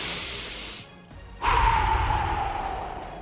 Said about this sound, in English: And that helps me relax. Deep breathing.